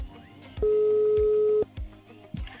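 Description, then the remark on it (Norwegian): A phone line's ringing tone sounds once, a steady, loud hum lasting about a second, with soft rhythmic thumps in the background before and after. “så jeg tror vi tar og ringer Sindre og spør”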